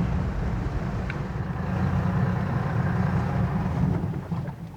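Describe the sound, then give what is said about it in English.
A boat engine drones steadily on a boat off the coast, a loud, continuous low rumble with a faint wash of water and wind over it, running without pause. “we've cut the engine. Tim's cut the engine for us because we have a passenger on the boat”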